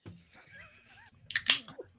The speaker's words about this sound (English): No, you got to tear that cardboard, man.